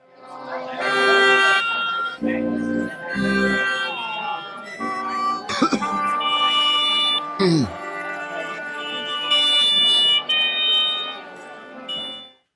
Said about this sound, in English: Yeah, that brings no joy to us, no satisfaction. There's no rhyme or reason for that kind of playing as the orchestra tunes up.